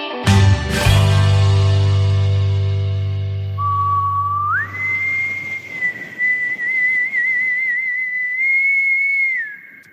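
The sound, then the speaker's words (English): After a low sustained drone fades, someone whistles the Doctor Who TV theme tune: a note slides upward into a long, high, wavering pitch held for several seconds over a faint hissy background. No talking. “Are you whistling the Doctor Who theme?”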